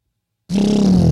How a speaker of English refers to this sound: That was also a sound we could have used for heavy hitter, but we decided not to, so I'm going to use it in this case. It's like a truck downshifting.